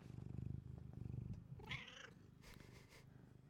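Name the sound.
cat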